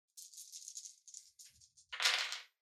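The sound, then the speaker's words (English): A handful of dice, rolled as 8d6 for damage, rattles in a rapid clicking flurry, then spills out in a louder, brighter clatter before stopping. No one speaks. “A lot of dice.”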